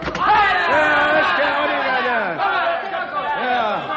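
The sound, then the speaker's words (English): A door opens onto a loud, restless crowd: many overlapping voices murmur and clamor continuously, with no single speaker standing out. “Open the door, Sid.”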